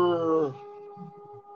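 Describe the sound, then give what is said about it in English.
Bronx ambulance and fire truck sirens wail with a rich, howling tone that slides downward in pitch, then settle into a steady, thinner drone that continues faintly to the end. “man, that's them Bronx ambulances and fire trucks. You hear it?”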